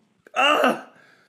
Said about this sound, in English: I hate sneezing. That shit hurt. Yeah, it hurts you too, right? The brain just does it.